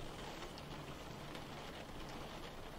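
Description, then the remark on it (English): Steady rain patters down on a hard surface, a dense continuous hiss with scattered sharper drops, unbroken, with no voices. “In the rain?”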